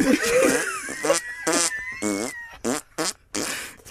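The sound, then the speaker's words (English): A voice imitates the squelching, farting noise fart putty makes when fingers are pushed into it, with a string of wet, buzzy bursts, starting in one long warbling blurt, then several short, rhythmic squelches. “Fart putty. Has to do you put your fingers into it and it goes.”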